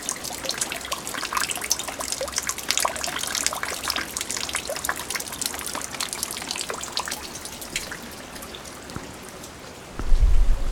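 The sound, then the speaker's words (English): Heavy rain in 2005, during an almost 100-year rain event, pours down steadily, a dense hiss of countless drops pattering on surfaces, with a louder low rumble swelling in near the end. No one speaks. “We had a I think almost 100-year rain event, and it was 3 weeks of sheets of water every night.”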